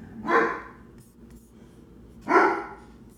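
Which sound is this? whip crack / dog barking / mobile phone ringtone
dog barking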